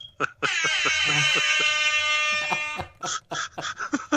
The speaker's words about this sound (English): Little air horn for him too.